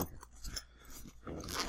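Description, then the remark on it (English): Crinkly, irregular rustling and scraping bursts as a large-ish bag pocket holding a small hard case is unzipped and its contents shuffled through, growing to a denser, hissing crunch near the end. No voices. “Next pocket is another large-ish type pocket.”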